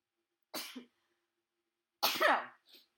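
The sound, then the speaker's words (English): Two sharp sneezes with a brief pause between, the second louder and more voiced, followed by a small breathy sniff. No talking. “Oh, I got to sneeze.”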